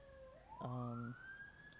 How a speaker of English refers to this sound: And here come the sirens. My goodness. We had a motorcycle and some sirens.